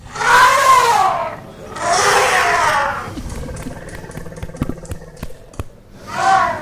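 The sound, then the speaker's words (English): An elephant trumpets in two long, loud, wavering blasts, then a run of sharp thuds and knocks like stamping feet, before a final shorter trumpet call. “Is that a happy or sad elephant?”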